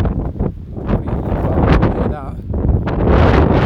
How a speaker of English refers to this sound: And come back to weather like this in the UK where it's blustery, windy, rainy, the storms last night were awful.